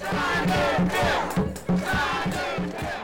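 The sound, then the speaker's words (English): A crowd of about 50 protesters, a mix of advocates, legislators and formerly incarcerated people with their loved ones, gathered outdoors in front of Governor Cuomo's office near Grand Central Station against solitary confinement. Many voices overlap into a steady, loud murmur with occasional shouts rising above the din, continuous throughout. “There's a crowd of about 50 gathered in front of Governor Cuomo's office near Grand Central Station.”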